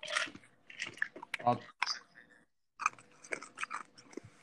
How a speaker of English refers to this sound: You chewing on ice there, bud? Uh-huh. Me too.